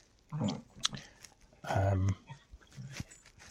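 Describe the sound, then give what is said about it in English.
A female dog playfully chews and mouths at a person's hand, wanting to play, and lets out a few snorting grunts and low, growly noises in short bursts. “Chewing on my hand at the moment, as you can probably hear in the background. She's not quiet about doing it, she just wants to play.”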